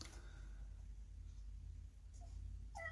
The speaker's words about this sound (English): Yes, kitty. My cat's talking to me.